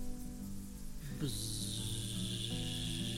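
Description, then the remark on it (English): Loud, steady buzzing of massive bees rising from a field of tall corn at Fairfield Farm: a low droning hum that swells after a second into a thicker, hissing buzz and keeps going without pause. “As our friends walk through the path of towering corn, they hear a loud, thunderous buzzing.”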